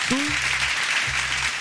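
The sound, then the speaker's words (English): An applause sound effect played to welcome a special guest: a steady wash of crowd applause runs throughout, with a short rising tone at the start and two sustained low humming notes beneath the clapping. “We don't got the applause.”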